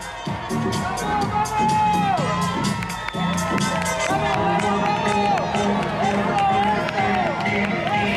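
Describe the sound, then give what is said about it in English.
A dense street crowd cheers and shouts continuously for a passing late marathon runner, many overlapping voices whooping and calling out together, loud throughout with a brief dip near the middle. “Whenever a late runner comes through, they get the royal treatment. The C parts, they get a great cheering.”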